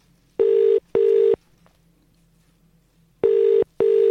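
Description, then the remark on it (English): Ringback tone of an unanswered outgoing phone call: two pairs of steady electronic double-beeps, each pair followed by a pause, heard clearly with no one speaking. “They're not going to answer, are they?”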